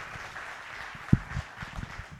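Steady audience applause, a dense wash of many hands clapping at moderate volume throughout, with a single low thump partway through and no voices standing out.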